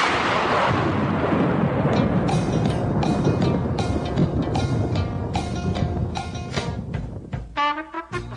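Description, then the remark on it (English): A loud thunder sound effect marking a lightning round, rumbling deep and continuous for about eight seconds, with sharp crackles layered over the roll before it cuts off abruptly. “It's a lightning round. Lightning. Lightning. Lightning. Lightning.”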